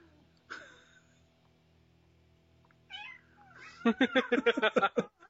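Cats fighting: a drawn-out yowl, a rising wail, then a rapid burst of harsh, pulsing screeches and spits that grows loud toward the end, with no one talking.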